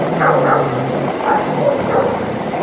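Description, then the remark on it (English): A military unit's dogs bark at night near Confederate troops holed up just south of Maryland's border with Pennsylvania in June 1863, in scattered, repeated bursts over a steady hiss of background noise, with no voices present. “The unit's dogs bark out into the night, keeping the Confederate troops on edge.”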